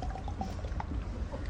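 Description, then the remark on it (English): Someone gulps down water in quick, steady swallows, the wet glugging sounds close to the microphone and repeating in a regular rhythm with no talking. “You take your water, you know, and just take a little sip. I kind of chug it awkwardly like this.”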